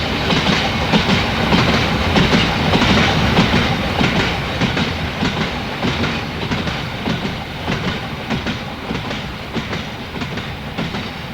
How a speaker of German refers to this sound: Die Lok pfiff wie irre. 2 Sekunden später raste der Zug an ihnen vorbei, keinen Meter von ihren Füßen entfernt.